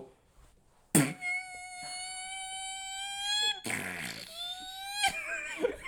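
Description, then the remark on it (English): A voice imitates a fart let out on a doctor during an examination, with two drawn-out, squeaky buzzing tones that slowly rise in pitch, the first long and the second shorter, fairly loud. “and I fart right on him.”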